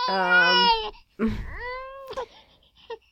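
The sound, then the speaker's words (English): A baby crying sound effect, one of about 15 prank sounds in a sound app from 2012, plays in loud, wailing bursts: a long high-pitched wail, a brief pause, then a second rising cry that trails off into short whimpering sobs. “There's crying babies.”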